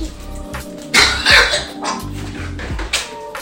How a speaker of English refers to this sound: Sorry. Nice little cough. Ooh. Yeah, been getting some nice ones there.